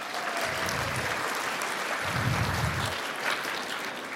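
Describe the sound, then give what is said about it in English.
An audience gives the event's volunteers a round of applause: a sustained, dense, steady wash of many hands clapping at once, fairly loud and even throughout without pauses or voices. “Give the volunteers a huge round of applause.”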